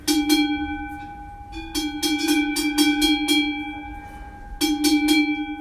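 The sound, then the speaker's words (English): A single traditional cowbell worn by a Swiss cow clanks in irregular bursts, with sharp metallic strikes over a sustained ringing tone, pausing briefly between clusters of swinging clangs as the cow moves. “This is a single Swiss cow wearing a traditional bell.”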